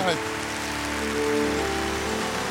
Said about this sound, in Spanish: Dale un aplauso, tremendo.